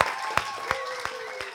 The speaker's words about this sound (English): We're very excited to have him. And let's give him a warm round of applause.